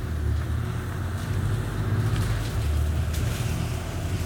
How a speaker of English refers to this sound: This bus is going so quickly. It's unreal. So this road that we're on at the moment, there's normally so much traffic. There's just none, which is absolutely insane.